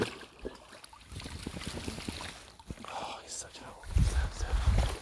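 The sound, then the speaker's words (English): A dog splashes about in a pond, with irregular sloshing and churning water sounds, growing heavier toward the end over light outdoor wind and faint murmured voices. “He's about to go in the pond. Oh no, you know, I'm so. Luckily, it rains so much, the water might be quite clean.”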